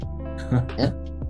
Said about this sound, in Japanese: 咳払い 咳